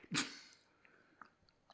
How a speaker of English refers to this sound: don't drink closer to the microphone. It is not... they know how to drink water, man. That could be a bong, though.